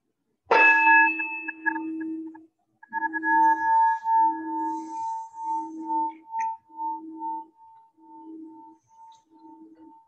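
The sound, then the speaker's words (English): A meditation bell is struck once, clear, then rings out with a warm, pulsing, wavering hum that slowly fades over about ten seconds, opening a daily Buddhist practice before the five remembrances are recited. No one speaks. “So I'm going to sound the bell, and then I'll recite the five remembrances.”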